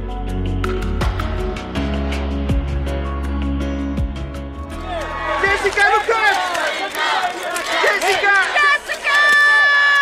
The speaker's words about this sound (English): What you're hearing over and over again is the name Jessica. The shouts are coming from photographers requesting that actress Jessica Chastain turn in their direction and strike a pose. The year is 2013, and the reason is the movie Zero Dark Thirty.